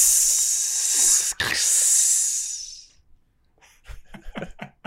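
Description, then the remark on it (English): A loud, steady sizzle hisses for about three seconds with a brief catch partway through, then cuts out and a person starts talking. “Good sizzle. That's fun.”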